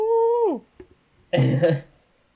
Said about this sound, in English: In fact, if I remember correctly, it is C418's cat, who is the person who did a lot of Minecraft's music and sound effects. It is C418's cat, who was startled awake, made a noise that is now the ghast sound.